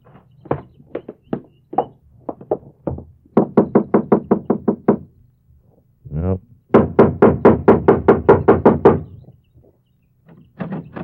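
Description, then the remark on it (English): Several rapid bursts of firm knocking on the locked door of a house thought to be empty, uneven groups of raps separated by short pauses, with a brief rattle of the handle being tried between the loudest runs of knocks. “Nope. It's locked.”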